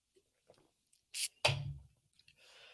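A short airy slurp of someone sipping beer, followed by a soft gulp and the thud of the drink being set down, with no one talking.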